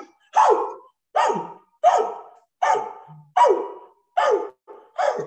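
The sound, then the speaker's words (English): A person on stage imitates a dog, letting out seven loud barks in a steady, evenly spaced rhythm with brief pauses between them and no talking. “And this person, the dude next to me, he becomes a dog.”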